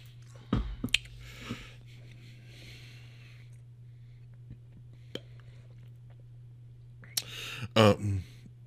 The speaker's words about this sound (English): while … sips it again